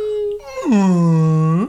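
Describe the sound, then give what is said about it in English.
A person imitates a whale call, starting with a steady hum that slides down into a long, loud, droning moan and then sweeps back upward at the end. “Is that pretty good? Is that better whale noise?”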